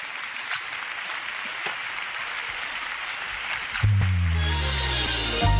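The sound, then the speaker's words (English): A church audience applauds God during a worship service with steady, dense clapping that fills the whole clip. Partway through, low sustained keyboard or organ notes swell in beneath the continuing applause. “Applaud God in this room, everybody.”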